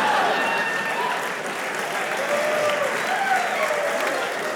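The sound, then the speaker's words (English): A crowd applauds steadily, dense clapping holding at an even loudness for several seconds with a murmur of voices and faint whoops mixed in. “You save your applause until it's your turn.”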